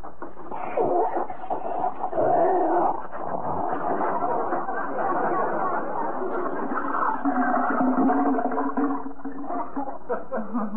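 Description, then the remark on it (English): A house's kitchen water pipes groan and rattle in a loud, continuous gurgling rumble, with wavering tones rising and falling and rough knocking and clattering running through it for about ten seconds. “The pipes of pandemonium.”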